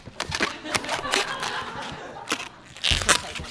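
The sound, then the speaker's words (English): Rubbery squeaks and crinkly crunches come in quick irregular bursts as an old balloon is twisted into a cartoon dog shape, forming the body and back legs, fairly loud, with faint background chatter. “It's funny, like, I don't buy these balloons very often. I can feel that this one's kind of old, so it actually might pop.”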